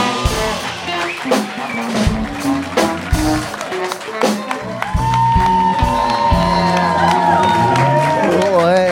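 An audience at a comedy show in Austin, Texas cheers and applauds loudly as a comedian is introduced, dense clapping mixed with whoops and shouted calls, the roar swelling and holding steady through the second half.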